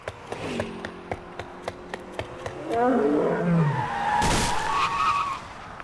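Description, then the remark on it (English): A steady ticking and engine hum give way to a loud, screeching skid that drops in pitch, then a sharp heavy impact as a lion truck slams into a woman pedestrian at an intersection, followed by rumbling noise. “Oh my God, that lady just got hit by a lion truck.”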